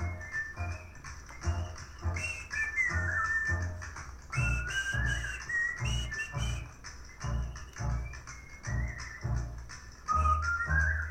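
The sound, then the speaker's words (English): Someone whistles a bouncy melody over an upbeat jazz recording, the whistled line rising and falling above a steady, thumping bass-and-rhythm backing that plays throughout. “I just love playing that song and trying to whistle to it as well.”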